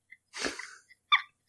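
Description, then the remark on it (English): A cat lets out a single quick, breathy sneeze, followed a moment later by a short, faint snuffle; no one speaks. “and literally, sorry, the cat sneezed.”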